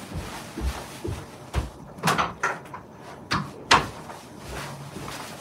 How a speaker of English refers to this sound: This, in fact, I realised what I was going to do is close my door so it looks neat.